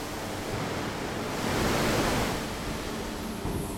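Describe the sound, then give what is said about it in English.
A steady, loud hiss of water sprayed at 160 bar onto steel to clean mill scale from its surface before rolling roars continuously, swelling slightly in the middle before settling back, with no voices present. “In order to cleanse the surface, water is sprayed at high pressure, 160 bar.”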